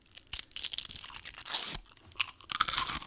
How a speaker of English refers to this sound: And to commemorate the occasion, we have 2 fortune cookies that we're going to open on air. As much as this is on air.